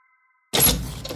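After a moment of silence, a sudden bright whooshing burst with a faint high shimmer swells in, then settles into a lingering airy rumble, as a door appears out of thin air with a blue light.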